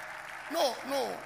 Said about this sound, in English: You can clap.